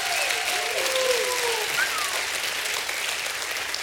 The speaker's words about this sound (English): Does anybody want fresh favor in your life? Give God a hand clap.